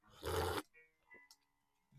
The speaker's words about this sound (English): Ready? Got to clear my throat for that one.